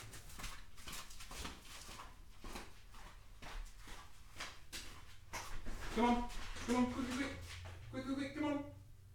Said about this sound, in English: stop barking.